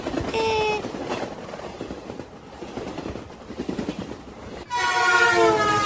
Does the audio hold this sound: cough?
no